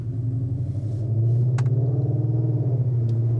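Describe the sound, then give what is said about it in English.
A deep, steady engine exhaust rumble from a Ford Mustang GT, loud and low-pitched with a throbbing pulse that swells slightly midway, plus a couple of brief clicks; no one speaks. “They have a nice exhaust. I like the sound of the Mustangs.”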